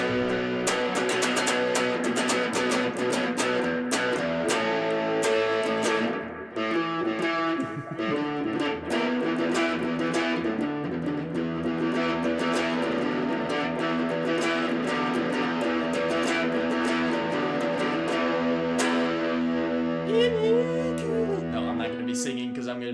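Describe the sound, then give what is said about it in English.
Electric guitar played through distortion, a steady, dense wall of sustained chords and notes with bright buzzing overtones, continuous and loud across the whole stretch with a brief dip midway. “Should I show the world some of my guitar playing?”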